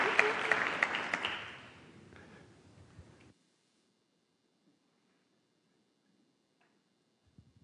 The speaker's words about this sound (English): Oh, they're cheering.